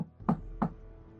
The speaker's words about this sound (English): Yeah, this is called the Meat Stack. It's a butcher's. He kind of gives a knock.